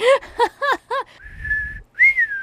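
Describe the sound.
Someone attempts a whistle: a few short squeaky voiced bursts, then a thin, wavering whistle tone over breathy air, a brief pause, and a second short, weak whistle, fairly loud.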